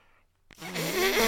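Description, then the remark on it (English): At a wedding reception, right after the best man's speech and toast, a single raspy, buzzing fart kicks in on cue after a brief silence and swells louder for nearly a second, low and rumbling with a noisy hiss on top; no one speaks. “Farts on, again. Right on command.”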